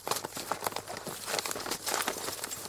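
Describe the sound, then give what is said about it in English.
A continuous scratchy rattle of gravel being stirred and shifted in a bag, with dense crunchy clicks and rustles coming in uneven bursts, no voices. “Yeah, it's gravel.”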